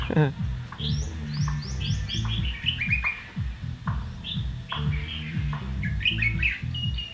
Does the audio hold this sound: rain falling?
no